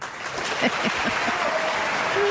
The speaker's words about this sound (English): Oh. Maybe some applause for him, too. Woo!